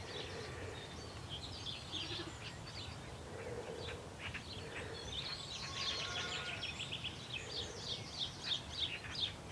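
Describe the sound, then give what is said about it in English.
House sparrows chirp in a busy, overlapping chatter, short bright calls repeating over a steady outdoor background hum, growing denser toward the end. “There's some house sparrows.”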